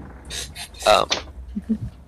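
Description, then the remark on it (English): A person shuts their door: a few quick rattling, scraping bursts build to a firmer thud, followed by some faint low bumps as things settle. “Hold on, let me shut my door.”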